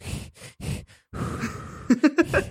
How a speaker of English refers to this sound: Short Lamaze breathing.